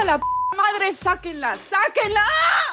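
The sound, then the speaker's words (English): A single short, steady electronic beep of a phone message notification rings out near the start, then overlapping voices talk and chatter for the rest of the moment. “After a historic 2-1 loss for Argentina, my phone blew up.”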